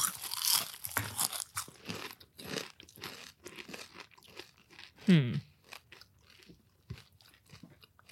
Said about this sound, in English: We should all crunch together. All right. So wait, good ASMR moment if you like ASMR. If you hate the sound of crunching mouths, then tune this out. Ready? Okay. One, two, three.